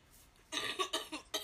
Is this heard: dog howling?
no